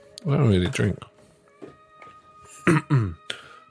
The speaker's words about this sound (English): why is it when you're drunk, you always have to clear your throat before you talk? Do you know what I mean?